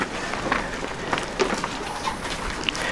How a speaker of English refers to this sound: Why do I hear so many pages turning? You guys should already be there. It's called a bookmark.